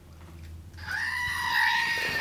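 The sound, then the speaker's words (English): A shrill, sustained human scream bursts in abruptly after a low hum, swelling louder toward the middle and easing slightly as it continues, the scream being moved past the microphone to sound like a drive-by. “Like if I move the scream, does it sound like a drive-by scream?”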